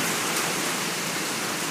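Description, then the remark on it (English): Steady, dense hiss of heavy rain pouring down, loud and continuous without any breaks, filling the whole moment with no voices present. “By the way, it's pouring down rain.”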